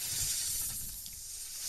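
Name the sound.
snake hiss sound effect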